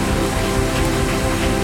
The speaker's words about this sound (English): Give the Lord the biggest hand clap and shout that you've ever given anybody.